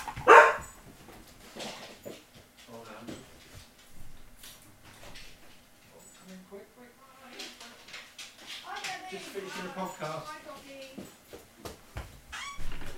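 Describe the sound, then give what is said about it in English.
A dog barks and yips intermittently, with some whimpering sounds, while muffled voices talk in the background. “The dog's back.”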